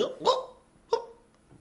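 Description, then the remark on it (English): A voice imitates hiccups: two short, sharp hiccup sounds spaced about two-thirds of a second apart, moderately loud, followed by a faint breathy trailing noise. “And suddenly like a you're hiccuping. Hiccup.”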